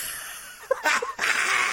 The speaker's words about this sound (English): That was such a cute sneeze. Excuse me. It's kind of cartoonish. I'm allergic.